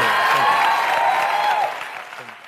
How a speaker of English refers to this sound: Everybody, big round of applause.